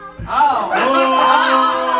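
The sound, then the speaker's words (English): A voice sings a long, warbling cat-like meow, the pitch sliding up and down for about two seconds, loud, imitating a cat singing. “Cat singing, hurry up.”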